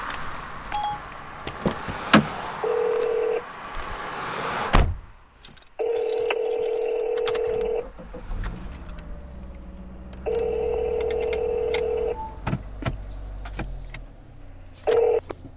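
A phone places a call: a steady electronic ringing tone sounds in long bursts, roughly four times, with pauses between, over the low rumble of a moving car interior.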